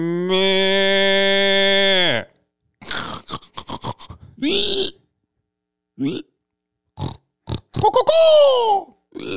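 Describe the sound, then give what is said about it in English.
Someone imitates a pig: a long, loud squeal, then a choppy run of snorts and grunting bursts, ending in another falling squeal. No words are spoken. “Hey there, is that a pig?”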